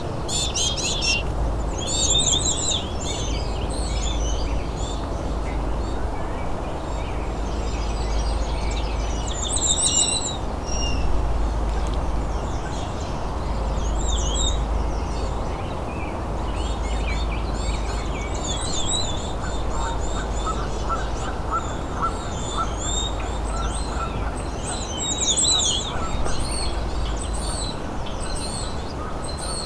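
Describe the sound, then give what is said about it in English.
Insistent, high-pitched begging calls from a chickadee repeat in quick bursts throughout, a second bird joining in, over a steady rushing background noise. No one speaks. “this insistent chickadee really wants food. Two of them now.”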